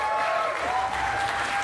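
An audience at a comedy competition applauds steadily for a comedian walking up to the microphone, a dense wash of many hands clapping at once with no break, at a constant level for the whole moment.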